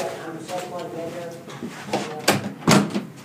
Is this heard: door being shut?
yes